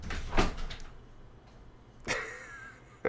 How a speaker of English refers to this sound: Sorry. Shut the door.